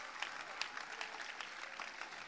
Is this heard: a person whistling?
no